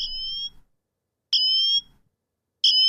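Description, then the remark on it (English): A smartwatch emergency siren blares in loud, piercing high-pitched bursts that grow louder, three harsh electronic tones repeating in a steady on-off rhythm with short gaps between, no voices present. “The siren's crazy loud.”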